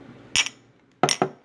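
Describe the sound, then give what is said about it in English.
Two bright, fairly loud clinks of tea cups tapped together in a toast at tea time, the second a quick double knock, with no voices in between. “Wait, one last clink.”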